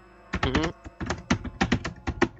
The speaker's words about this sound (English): I'm going to start typing to you right now, okay?